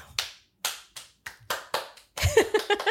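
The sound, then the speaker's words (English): A single pair of hands claps slowly and sharply, about seven claps with gaps between them, then speeds up into a quicker, louder flurry of clapping at the end. “Slow clap worthy?”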